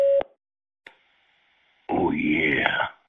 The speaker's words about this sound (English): Please record your message. Record after the tone.